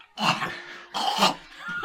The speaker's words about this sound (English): You cough up a furball.